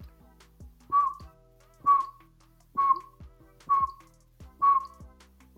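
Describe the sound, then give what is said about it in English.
A person whistles an imitation of a pygmy owl's call: five short, evenly spaced hoot-like notes in a steady rhythm, clear, with no talking. “But they are active mostly at dawn and dusk, and they make a noise that's just kind of like a a repeated whistle.”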